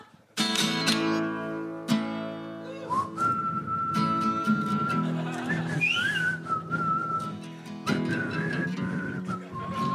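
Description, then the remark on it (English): Someone whistles a melodic tune, pitch gliding and sustaining across several notes, with a busy, layered background of other tonal sounds filling the ten seconds. “Do you know how to whistle?”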